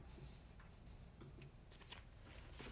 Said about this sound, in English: Now I want you to take that piece of paper. I want you to crumple it up.